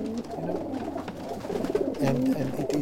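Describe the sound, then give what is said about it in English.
Several racing pigeons coo in their loft in a low, throaty murmur, overlapping soft warbling calls that swell slightly toward the end, with faint rustling and shuffling in the background. “Riyad comes in here every day from 4:30 a.m. to feed his pigeons”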